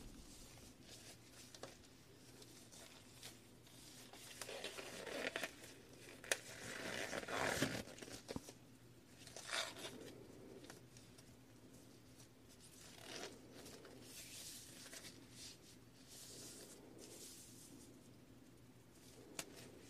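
Paper rustles and tears in a series of rough, scratchy bursts, the loudest rip around the middle, with quieter crinkling handling noises before and after. No one speaks.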